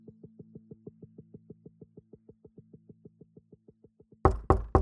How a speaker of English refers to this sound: So now the wolf went for the third time to the house door, knocked at it,